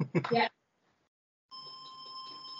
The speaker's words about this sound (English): So, 1 second, my doorbell's just going.